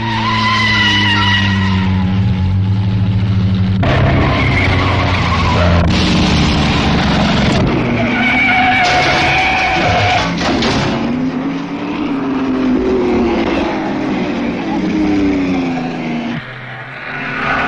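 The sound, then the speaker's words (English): Loud, droning vintage race car engines roar past one after another on a circuit, with Fiats running first, second and third, their pitch swelling and dropping as they go by, with tires squealing at moments and no voices. “Fiats are outclassing all other cars today and are now first, second, and third.”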